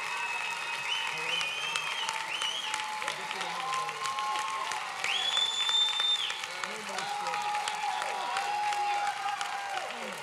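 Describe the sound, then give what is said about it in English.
A crowd gives a hand clap for Jesus, applauding steadily and loudly for about ten seconds, dense clapping mixed with scattered cheers and shouting voices rising and falling throughout. “Give Jesus a great big hand clap for all he's done.”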